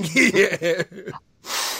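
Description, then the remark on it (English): A voice chuckles in short voiced bursts, falls silent for a moment, then one long, breathy sniff follows, a steady hiss of air drawn in through the nose while smelling a VHS tape box. “Just thumbs up, thumbs down, and a nice sniff.”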